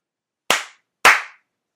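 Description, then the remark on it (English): Two sharp hand slaps, about half a second apart, each a crisp smack with a quick decay, the second slightly louder, with silence around them. “That's it. That's all you get. God damn it. Two slaps.”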